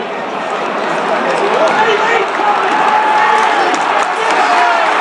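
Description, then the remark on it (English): A large football crowd, including Celtic fans, roars and shouts for a penalty after a defender fell, a dense, steady wall of noise, loud, holding at full intensity for the whole stretch with no clear pauses. “Big shout for a penalty there.”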